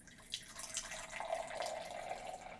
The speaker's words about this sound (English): This one is a 12-ounce bottle of Baja Blast. 20-ounce bottle of Baja Blast, do with a blast of natural and artificial tropical lime flavor. 280 calories per 20 ounces. I'm going to pop the top. Oh, my top! Nice. And the pour.